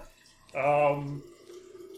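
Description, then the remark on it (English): A brief splash of urine being poured, lasting about half a second with a hollow, ringing tone, then fading into a quieter murmur. “And to be fair, I'm not drinking water. I'm pouring in my own urine.”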